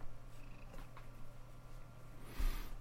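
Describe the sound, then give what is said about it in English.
A cat purrs softly and steadily, a low continuous rumble running throughout, with a brief louder rustling burst near the end. “Ow, kitty.”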